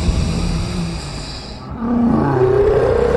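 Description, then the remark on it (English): A loud, sustained monster roar in a room, rough and growling, that briefly dips then surges back with a rising, snarling tone, filling the space with no voices. “It roars at me, and I can feel its phlegm like acid in the room, but I will not be moved.”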